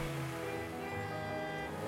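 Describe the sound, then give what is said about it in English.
A car on the 20-yard line revs its engine steadily and loudly, a continuous throaty drone with a rising and falling pitch that fills the whole moment, with no voices. “Hey, is that your car on the 20-yard line?”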